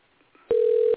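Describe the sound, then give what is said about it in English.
A single steady telephone tone sounds loudly for about half a second after a quiet stretch as a phone call is placed to a hotline, flat and unwavering, with no voices present. “And we could settle that both right now by this phone call.”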